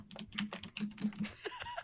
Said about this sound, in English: You can hear boy, typing in like, the mic. I know. You can hear the typing in the mic.